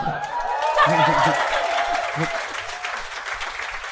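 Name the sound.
smattering of applause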